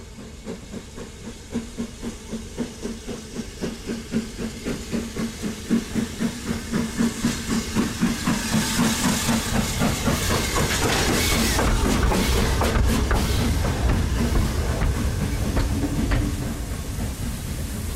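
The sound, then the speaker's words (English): A steam train approaches a station on a very still, windless autumn morning, its rhythmic chuffing building in pace and loudness over a steady hiss, with rising clatter and metallic clanks as it nears. No voices are heard. “The train is on its way.”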